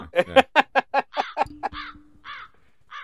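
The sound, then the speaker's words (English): A person imitates a bird call with a rapid run of harsh, caw-like squawks, about a dozen close together, then a few slower, spaced calls trailing off. Loud, with no other talking. “Good bird noise.”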